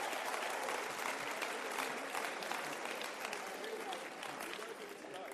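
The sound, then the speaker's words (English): A large crowd claps steadily and densely for several seconds, a continuous wash of applause, tapering slightly toward the end. “Give yourselves a round of applause, well done.”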